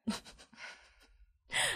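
A close, breathy yawn: a drawn-out, airy exhale that fades, then a sharper, louder breath at the end. No one speaks.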